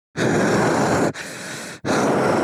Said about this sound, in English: … asking me to scream while breathing very heavily down the mic